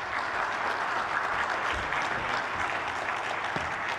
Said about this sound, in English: but would you give a big round of applause to my friend, our friend